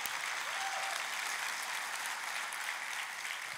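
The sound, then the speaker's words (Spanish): An audience at a church service applauds themselves steadily, a dense wash of many hands clapping at an even loudness for the whole stretch, with no voices standing out above it. “Dale un aplauso a tú mismo.”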